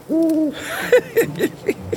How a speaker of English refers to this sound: My only friend for the past 35 years has been this darn owl.